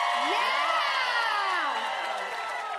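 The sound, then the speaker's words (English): A crowd of first-timers on a Chips Dip in Mexico trip cheers and applauds for about three seconds, many voices whooping and shouting over a steady wash of noise that stays loud and eases slightly toward the end. “All right, by applause if this is your first chips dip in a Mexico trip.”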